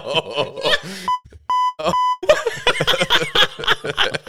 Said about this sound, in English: Guys, they should have never gave me a bleep button on this on this Rodecaster because I love it too much.